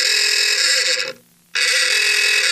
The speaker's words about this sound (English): I am in search of a new alarm for my phone. You know, the alarm that wakes you up in the morning. There's so many choices, so many different sounds you can wake up to. For years, it's been this one.